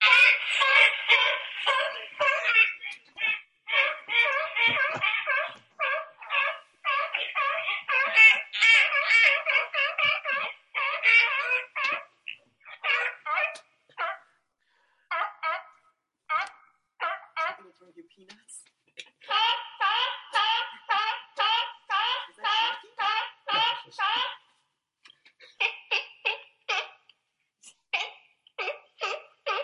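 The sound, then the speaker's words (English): Seals bark and honk in long, rapid runs of harsh, raspy calls, broken by brief pauses, with no voices present throughout. “Seal noises, by the way.”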